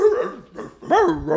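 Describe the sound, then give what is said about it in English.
A person imitates the high-pitched dog bark they made underwater, giving a few loud yelping woofs whose pitch swoops up and down, with no other talking. “What noises were you making underwater? I went the big bark. Give us a rendition.”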